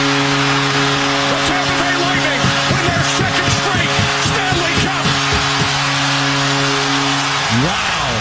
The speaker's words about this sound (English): When you haven't heard real crowds for a while, that really stands out as different than the fake crowd noise.